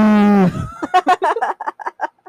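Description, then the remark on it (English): Someone does a loud, drawn-out imitation of a cow's moo that slides downward, followed by a quick run of choppy laughter-like bursts. “What if she was just down on the ground on all fours eating hay like a cow?”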